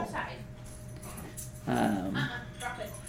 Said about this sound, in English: And we have a dog that really wants to go outside, which is convenient for us because we're getting ready to go to dinner.